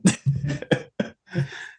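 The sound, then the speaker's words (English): A raspy fit of coughing: about five rough bursts in quick succession, some short and sharp, others longer and more drawn out, with brief pauses between. “Why does the camera flip every time you cough?”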